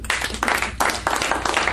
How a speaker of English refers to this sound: Now, a big round of applause.